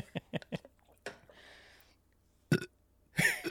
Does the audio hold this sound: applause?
no